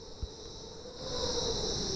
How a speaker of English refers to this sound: Mosquitoes coming in hundreds after you, if you enter their kingdom.